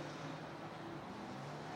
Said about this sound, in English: Green flag, as you can probably hear from the car noise behind us, as cars move out from their pit boxes. And Nick Leuchmans is the first out in the Rockwell Autosport Development RS3.